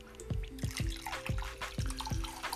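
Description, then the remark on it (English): Brewed tea, steeped at around 70 degrees Celsius, is poured out in a steady trickling stream broken by about half a dozen bright, bubbly plops at a loose, irregular rhythm, with no voices. “So let's go ahead and pour that out.”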